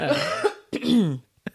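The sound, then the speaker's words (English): Two rough, voiced coughs in quick succession, fairly loud, followed by a brief softer cough or throat catch at the end, with no talking. “My cough is almost gone, guys.”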